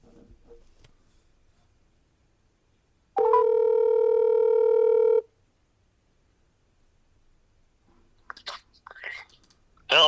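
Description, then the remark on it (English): A phone call rings out: one loud, steady electronic ringback tone lasting about two seconds, surrounded by near silence, then faint rustles and clicks toward the end. “Well, we're gonna get him on the phone and see what his most memorable father-son fishing trip is.”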